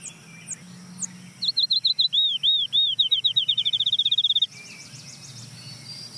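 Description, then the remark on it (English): A field sparrow sings once, clear: a few sweet whistled notes that speed up into a rapid bouncing trill, over a soft background of insects and distant birds. “That's the field sparrow.”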